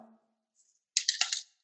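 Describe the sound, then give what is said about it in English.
Sprinkles and chocolate chips fall off a cookie as it is cleaned off with a paper towel, in a quick patter of light, crisp ticks lasting about half a second after a near-silent pause. “Let all the goodies fall off, leaving us with a nice, clean cookie.”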